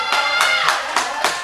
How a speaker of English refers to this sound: There's more applauding for more winners. Another one walking through here.